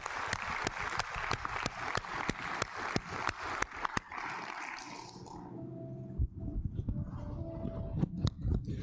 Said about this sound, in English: Let's give the Lord a big hand clap today, huh?